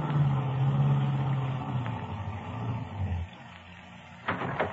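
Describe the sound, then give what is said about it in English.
A car engine hums low and steady, eases down and cuts out after a few seconds as the car pulls up behind another car on the left and stops, followed by quiet and a brief thump near the end. “Pull up behind that car just ahead on the left.”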